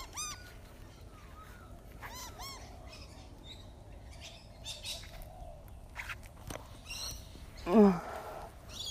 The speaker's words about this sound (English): Look at those birds. Beautiful little birds.